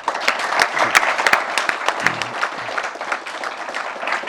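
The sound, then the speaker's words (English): An audience applauds steadily for the panelists and Bruce Schneier at the end of a panel discussion, many overlapping hand claps forming a dense, crackling patter that holds at a fairly even loudness throughout without any voices. “Can we have a clap for everybody?”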